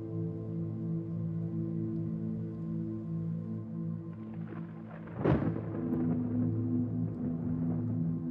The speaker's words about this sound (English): Deep rumble of thunder from the dragon's powers are comforting and reassuring.